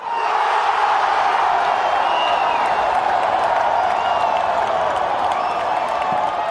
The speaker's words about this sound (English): I went to Brazil and I recorded football games. I went to Morumbi Stadium to record a game between Brazil and Bolivia, and the crowd was insane.